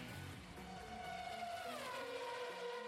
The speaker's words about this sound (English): That's an actual car or something.